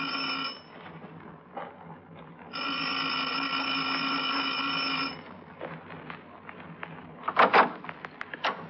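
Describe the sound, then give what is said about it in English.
A harsh electric doorbell buzzer, pushed by police at midnight at a fourth-floor apartment on 112th Street, sounds twice: a brief burst and then a long steady ring lasting a few seconds, followed by scattered clatter and sharp knocks. “How come you're pushing doorbells at police?”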